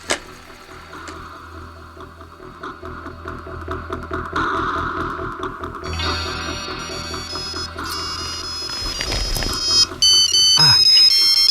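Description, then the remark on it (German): A shop telephone on a desk rings during an outgoing call. Its ringtone plays over a steady engine-like hum, with bright electronic tones building from midway and growing louder toward the end; no one speaks. “Zum Glück stand das Ladentelefon auf dem Schreibtisch von Herrn Andresen.”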